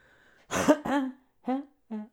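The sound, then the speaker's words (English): A cluster of loud throat-clearing coughs: two quick harsh bursts, then two shorter throaty coughs a beat apart, with no talking around them. “You guys ever change your cough in a group of people?”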